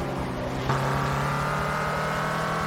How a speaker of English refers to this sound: Ugh, this car sounds nasty. Epic.